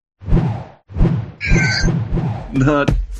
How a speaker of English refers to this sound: Not the cartwheel sound. I know, but it just said spin and clunk. That's the only thing that comes up when I go for clunk.